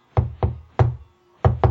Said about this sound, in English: Yeah, the knocking, yep. The three and two knock, which is so essential to the to the reader,